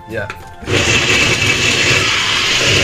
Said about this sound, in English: He's going to blend this up right now. Let's have a look here. Blend it up. Here we go.